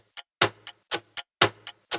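A clock ticks in a steady tick-tock rhythm, sharp clicks alternating louder and softer, about seven beats in two seconds, with no voices.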